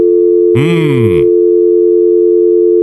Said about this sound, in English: Well, we know what the hang-up sound means, don't we?